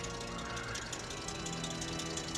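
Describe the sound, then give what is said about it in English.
A car engine runs steadily with a rapid mechanical ticking and a high, whining squeal from worn, squeaky belts, a continuous rough drone with no voices. “You can't tell me they couldn't hear that car coming in. Yeah, right. Right? It's got squeaky belts. It's got a huge tick sound.”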